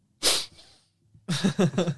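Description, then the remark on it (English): A single sharp sneeze bursts out loudly, then after a brief pause a person starts talking. “I got to sneeze.”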